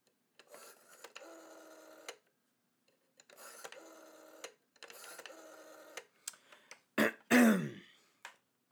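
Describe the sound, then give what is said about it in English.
A telephone rings on a phone line, three long buzzy ring bursts separated by short pauses, followed by a brief louder throat-clearing-like noise near the end. “Still ringing.”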